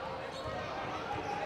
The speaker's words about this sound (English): And he's gonna walk it across the timeline and then stop there and put on a dribble clinic here for about 10 seconds, probably 15 seconds.